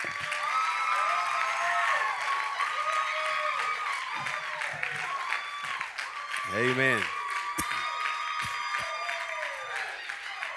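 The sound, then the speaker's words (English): An audience claps its hands steadily and continuously, with scattered cheers and shouts mixed in, for the full stretch; a voice briefly calls out over the applause. “If you're thankful for all them, just clap your hands one more time.”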